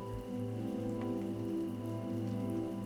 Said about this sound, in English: As your body melts deeper into your bed, see if you can notice the soft sounds of raindrops in the background.